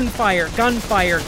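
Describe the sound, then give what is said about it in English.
A voice imitates gunfire with three quick, pitched bursts in a row, fairly loud, each one a rising-then-falling vocal shot rather than a real gun. “Gunfire.”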